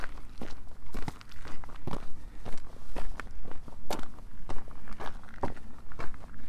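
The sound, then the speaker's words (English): Footsteps walk at a steady, even pace along the coast path between West Weald Owls and Weald Edward, each step a crisp scuffing crunch, about two per second, with a low rumble of background noise and no voices. “Passing along the coast path between West Weald Owls and Weald Edward.”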